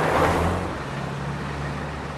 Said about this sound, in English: And if you listen, you'll hear the sounds that you always hear in a car park. But listen more carefully. There are other sounds. Magical sounds. Drifting in the air.